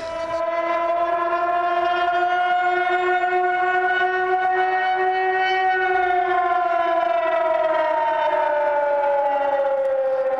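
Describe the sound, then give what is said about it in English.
A loud civil defense siren in San Francisco wails steadily for the whole stretch, its pitch slowly rising and then sinking in a long, sustained drone with no voices. “That siren means only one thing in this town.”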